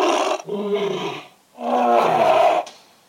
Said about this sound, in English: Oh, here we go, second one. That's a tiger. It's terrifying.